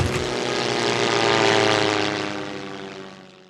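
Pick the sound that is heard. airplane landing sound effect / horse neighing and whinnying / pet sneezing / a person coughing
airplane landing sound effect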